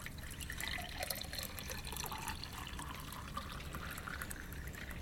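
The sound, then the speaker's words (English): A steady stream of liquid pours into a container in the radio game Take It to the Limit, a continuous splashing gurgle with a rising pitch as the vessel fills, with no talking. “Until then, you feel free to pour away, my man. Ready to pour.”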